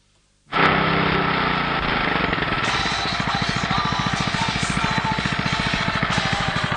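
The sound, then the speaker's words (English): A lawnmower engine starts abruptly and runs loud, settling into a rapid, steady chugging rhythm with a rough, rattling drone, with no voices. “So, you want a lawnmower, do you?”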